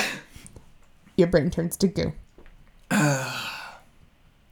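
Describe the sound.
A single loud, sharp sneeze bursts out just after a short stretch of speech, then fades into quiet.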